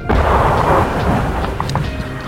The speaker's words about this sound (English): More incoming gunfire. Some Argentine batteries around Stanley. Got him. Everything now landing far too close for comfort.